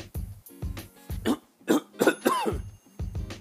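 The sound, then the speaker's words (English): Someone coughs and clears their throat over and over, about half a dozen rough, harsh bursts in a steady rhythm with brief gaps between them and no talking. “And it's going in a cough again.”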